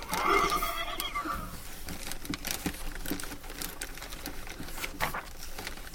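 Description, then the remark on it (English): A horse lets out a loud, wavering whinny in the first second or so, then fades into a stretch of scattered clattering and rustling noises with no voices. “You want me to stay outside with the horses?”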